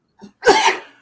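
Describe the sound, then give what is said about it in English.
A single sneeze: a short, soft intake of breath, then a loud, explosive burst that trails off over about half a second. No talking. “Bless you.”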